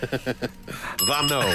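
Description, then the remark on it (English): A bell is rung several times in quick succession, followed by a louder, sustained ringing tone that carries on to the end, fairly loud. “Here he goes again with that blooming bell.”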